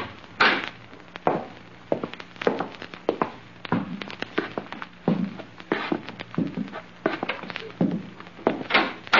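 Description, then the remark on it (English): A back door opens and closes as people go out through it, amid a run of irregular thuds and clunks, like handling and footsteps, with no one speaking. “We're going out through the back door.”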